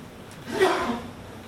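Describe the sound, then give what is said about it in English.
A single sharp sneeze bursts out, a quick breathy intake followed by a hissing, explosive release that fades within half a second. “Bless you.”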